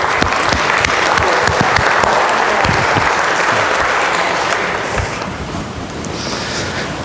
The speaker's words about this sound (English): Let us give them a round of applause.